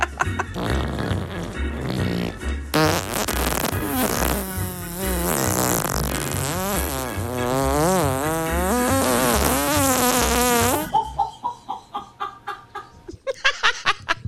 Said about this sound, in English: I'm not going to lie to you. I am most proud that the longest fart was mine.